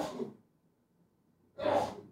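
A single loud, breathy sneeze bursts out after a short quiet pause, following a fainter exhaled breath at the start. No one speaks.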